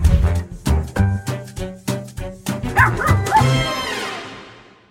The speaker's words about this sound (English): That's our little grand dog, Charlie. He's so adorable.